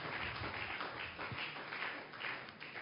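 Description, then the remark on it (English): A church audience claps together in a dense, continuous patter of many hands, steady throughout, with no voices standing out above it. “If you are clapping, do that better.”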